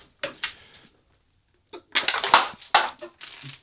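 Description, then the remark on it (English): A beer can is cracked open: a couple of short crinkling snaps, a brief pause, then a louder run of crackling, spraying fizz lasting over a second. No one speaks. “Start by breaking this open.”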